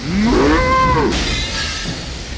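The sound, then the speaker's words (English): A single long, loud cow moo rises and then falls in pitch, clear, trailing off into a fainter, breathy tail with no talking. “Here's a cow.”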